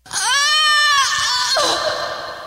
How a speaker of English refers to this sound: It's like a call and answer. It's like a, you know, scream siren, I don't know, beacon, scream beacons.